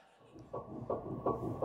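A fetal heartbeat on an ultrasound monitor, fast, steady whooshing pulses about three per second, muffled and rhythmic over a low rushing hiss, with no voices.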